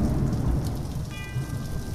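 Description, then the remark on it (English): Steady, dense rain hisses throughout, with a low rumble underneath, and about halfway through a single bell tone rings out and sustains, faint and ringing over the downpour, at the start of a song. “I've always loved the rain and the bells.”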